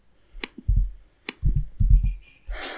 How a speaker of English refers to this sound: I just typed it in. I'm going to have to add that typing sound effect we always add when I type. Listeners love it's that. It's the only sound effect we have. Yeah. Just me typing